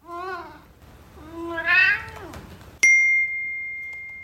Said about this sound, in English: And sure enough, my phone dings and says, a sound has been recognized that may be a cat.